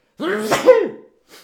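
A single loud sneeze with a drawn-out voiced build-up and a sharp burst, followed by a brief faint breath or sniff after a short pause.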